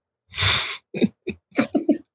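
A single loud, close sneeze bursts out, followed by a few short breathy vocal sniffs and grunts in quick succession, with no talking.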